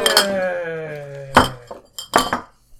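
Glasses clink together in a toast, about four bright, sharp taps spread over a few seconds, each leaving a high, ringing tone that slowly fades.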